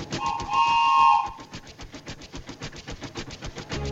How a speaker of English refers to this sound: Chug, chug, chug. Puff, puff, puff. Ding dong, ding dong. The little train rumbled over the tracks. She was a happy little train.